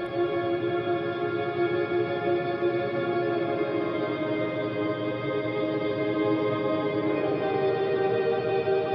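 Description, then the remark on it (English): A song's intro run fully through a Pro Tools reverb plugin on its church setting, about a 9-second reverb with none of the original signal: a sustained, droning musical passage awash in heavy, cavernous reverb, its tones smearing together into a wide, open wash of sound at a steady volume. “Because again, it's something, it's not eating too much space up, but it's giving that wonderful open sound. Yeah, sounds cavernous almost, you know.”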